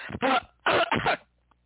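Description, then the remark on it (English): A loud burst of three or four harsh, raspy coughs in quick succession, followed by a brief silence. “Sorry about the coughing, folks.”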